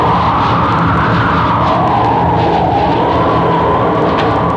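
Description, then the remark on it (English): A loud, steady roar of storm wind on an island fills the whole stretch, its howling pitch slowly rising and falling as it gusts, unbroken with no voices. “Not in this storm. Listen to that wind.”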